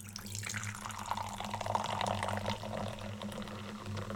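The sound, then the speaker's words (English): A fizzy drink is poured steadily into a cup, a continuous splashing, bubbling stream lasting several seconds over a low background hum, with no talking. “I mean, if the cup pour, if yeah, if the liquid pouring ASMR isn't getting to you, the oh, that's weird.”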